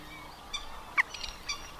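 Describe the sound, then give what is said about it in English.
Three short, sharp moorhen pips ring out at roughly even intervals, the middle call the loudest, against a faint, steady outdoor background by the water with no talking. “The chirps and pips of moorhens, insects, and the aerobatics of the martins flying overhead.”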